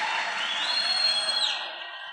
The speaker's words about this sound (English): Come on, clap your hands if you have to. እጃችሁን አጨብጭቡና አመስግኑ.